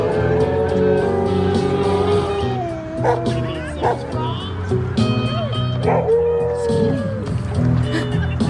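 A dog howls and yelps along to steady amplified music from a busker's amp, its wavering, gliding cries rising and falling over the sustained tones for several seconds.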